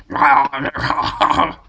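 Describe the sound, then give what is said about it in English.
A man's voice imitates a dog growling and gnawing, fairly loud, in a few rough, throaty bursts that run together for under two seconds. “If it keeps you from barking during the podcast, yeah.”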